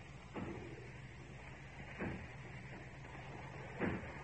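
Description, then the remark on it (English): Three dull, heavy thuds echo from a factory, a couple of seconds apart, as its doors are battered and broken down, over a steady low background rumble. “As if they were breaking down the doors.”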